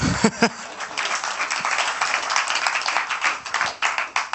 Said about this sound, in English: You're part of something very special. You should give yourselves a round of applause.